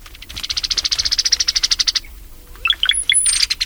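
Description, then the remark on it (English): A rapid, even trill of bright chirps runs for about two seconds, then brown-headed cowbird calls follow: a few liquid gurgling notes and a thin, high whistle, clear with no talking. “One notorious avian example, the behavior of brown-headed cowbirds.”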